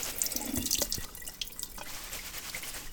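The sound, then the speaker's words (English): Nettles being rinsed under a running kitchen tap: a steady hiss of flowing water broken by irregular splashes and drips as the leaves are handled, with no talking. “We're just going to rinse off our nettles.”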